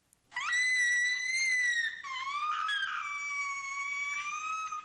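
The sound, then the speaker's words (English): An 11-year-old girl's high-pitched, sustained scream of excitement as she opens a present, loud, lasting several seconds with a brief dip and shift in pitch midway before continuing. “That's excitement. Oh, really? That's actually about an 11-year-old girl opening a present, and it's so exciting.”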